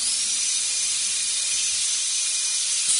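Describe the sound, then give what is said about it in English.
A dental drill whirs steadily in a thin, high-pitched whine over a bright, hissing rush of air, holding an even level throughout with no voices. “It was, it's of course, horrible. A dental drill.”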